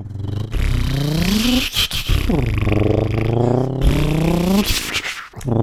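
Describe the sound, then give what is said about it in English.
A truck engine roars past, its droning pitch climbing, dropping briefly as if shifting gears, then settling into a steady rumble before rising again. Loud and continuous, with no talking over it. “And that's a truck. It sounds like a Subaru.”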